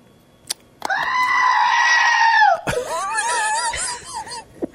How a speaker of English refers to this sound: There's a goat. She's got a button, plastic button, and this is what it does.